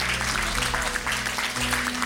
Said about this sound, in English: Come on, give God a clap of hand, a clap of praise. Come on.